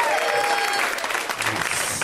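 A comedy show audience applauds a comedian, a dense wash of clapping that stays loud and even throughout, with a faint whistle-like tone in the first part.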